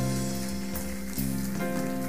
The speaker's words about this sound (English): Anyone else? Come on, church. Let's keep clapping for them. Let's celebrate.